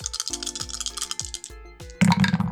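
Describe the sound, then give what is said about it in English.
Three dice, rolled for a check in a tabletop game, rattle and click in quick, uneven bursts, then spill out in a louder, denser clatter near the end. No voices are heard. “This is one of the smallest rolls that I have done. 3 die in total.”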